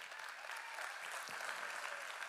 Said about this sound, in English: I think there's come on, you can clap for him.